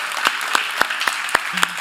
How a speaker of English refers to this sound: You're like, oh man, everyone's clapping for me. This is so awkward.